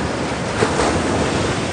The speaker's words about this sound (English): So with that, guys, I'm gonna get out here in this ocean. I'm gonna go to a higher state. I'm gonna leave you with the sound of the ocean, okay? It is the sound of the ocean.